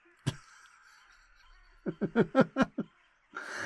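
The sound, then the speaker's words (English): A quick run of six or seven harsh cawing calls of crows rises and then falls away, fading as the crows drop dead, preceded by a single sharp click and a thin, steady drone in the background. “Their once overwhelming drone of caws slowly dies out as each second another bird drops dead.”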